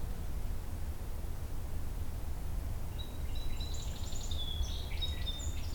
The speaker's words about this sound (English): It's a lot of repetition with the song sparrow right now.